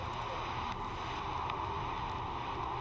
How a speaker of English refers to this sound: It sounds like rain. It does.